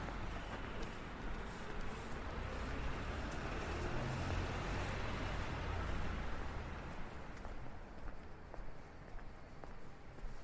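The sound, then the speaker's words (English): A steady roar of street traffic on St. James's Street fills the scene, a dense, continuous rumble of passing cars and buses with occasional faint clicks and footsteps, fairly loud, with no one speaking. “So here we are in Smithson Plaza, and finally the roar of the traffic has gone down just a little bit.”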